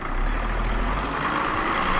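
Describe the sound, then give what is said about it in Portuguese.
A bus engine idles steadily as workers board the bus, a continuous low rumble with a broad mechanical hiss over it, holding an even level throughout with no voices. “Pouco depois, os trabalhadores do MST entram em um ônibus e vão para sua própria terra”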